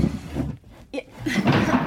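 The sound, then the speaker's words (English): Heavy wooden chairs are lifted and shifted, with a short knock in the middle and a longer rough scrape toward the end, fairly loud. “Do you want a hand with the chairs?”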